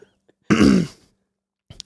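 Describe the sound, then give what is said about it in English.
A voice imitates a honking nose blow: one loud, buzzy, half-second honk with a low pitched tone under a rough rush of air, then a short, softer huff. “Like who blows their nose and it sounds like that?”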